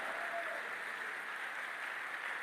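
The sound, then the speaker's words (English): An audience claps hands together during a prayer, in a dense, continuous patter, steady and fairly loud throughout, with no voices rising above it. “Who is clapping their hands as a warrior?”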